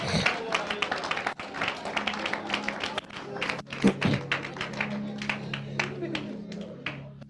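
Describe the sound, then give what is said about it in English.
An audience claps for the Lord Jesus for several seconds, a dense, uneven patter of sharp hand claps over a steady murmur of voices. “Clap for the Lord Jesus.”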